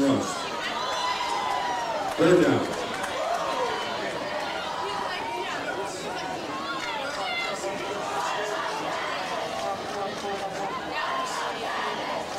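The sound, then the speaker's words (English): Steady crowd noise at a football game: a dense wash of many overlapping voices shouting and cheering on the Cardinals, with a brief louder swell early on, then a constant roar for the rest. “We still got a pretty decent crowd here underneath us cheering on the Cardinals, wishing that they would have gotten a better result at the end of the night.”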